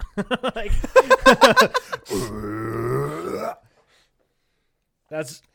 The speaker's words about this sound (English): Had people like hear me fucking burp and be like, was that real?